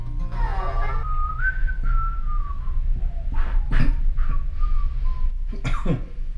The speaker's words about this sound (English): What are you whistling? Tchaikovsky?